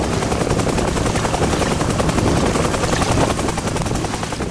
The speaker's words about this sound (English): The rescuing Huey came down over the swamp and hovered just above the swamp water.